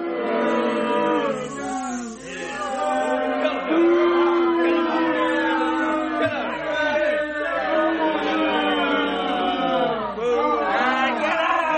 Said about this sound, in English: All right, calm down, crowd. They just missed it.